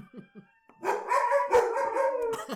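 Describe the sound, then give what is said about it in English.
A few short yips lead into several dogs howling together in a loud, sustained, wavering chorus, singing along with a siren that is going off, its faint steady wail underneath. “I just knew it was going to happen because that siren was going off. When sirens sound, the dogs sing.”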